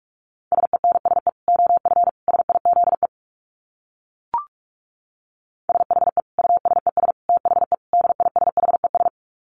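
Rapid Morse code at about 45 words per minute: a single steady mid-pitched tone keyed in quick dits and dahs, in two runs separated by a pause with a brief click in the gap.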